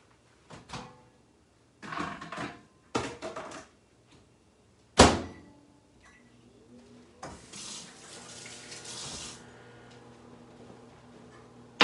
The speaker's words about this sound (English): All right, so 3.5 minutes. Here we go. Let's put this in the microwave.